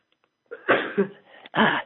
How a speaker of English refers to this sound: oh my God, I'm gonna sneeze. Hang on.